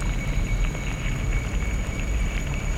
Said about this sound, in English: They describe the multiple layers of the sound you might hear. The rattling and rustling of leaves as the ants seize along. The staccato of insects jumping to get out of their way and knocking against leaves and wood.